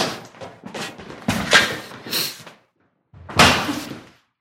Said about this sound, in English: How was the door closing? You gotta be kidding me. I'm locked in this dump dedicated to the worst excuse for a holiday ever?